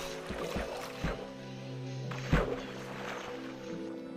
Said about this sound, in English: I'm gonna pedal down these rapids. And I fell down the rapids. Lord have mercy.